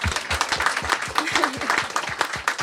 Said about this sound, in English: So I think, first of all, a round of applause for youth who's in the streets, right? Whoa.